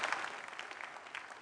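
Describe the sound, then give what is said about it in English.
An audience claps for John G. Lake together in a dense, steady wash of many overlapping hand claps, with no single beat standing out and no voices. “Clap your hands for John G. Lake, how he defines the Holy Ghost.”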